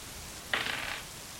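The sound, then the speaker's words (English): A twenty-sided die is rolled for a tabletop game check, clattering across a hard surface in one short, rattling roll lasting about half a second, fairly quiet, with no talking around it. “Okay, so I'm rolling 1d20.”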